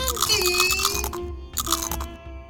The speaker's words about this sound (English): Well, new Shorty's Mega Crunch Potato Chips are the perfect choice for high-speed car chases. Falling out of an airplane. And drowning out those super-ass annoying sounds.